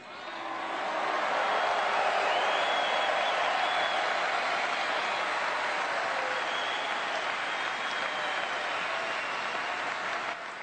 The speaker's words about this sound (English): Ooh, yes. They're clapping. They turned it into a clap. And it sounds like a Vuzuvela boo on my end. Yeah, they start off by booing Hillary Clinton.